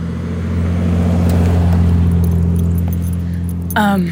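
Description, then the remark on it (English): Cars drive by loudly while the recordist is out on a hike, a steady low engine rumble filling the whole stretch, with metallic jingling on top and a brief high squeak right at the end. “Mind the noise, there are going to be some cars driving by.”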